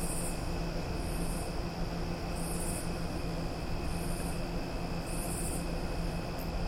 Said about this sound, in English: I mean, first of all, there's some sort of fan, I don't know what the heck is.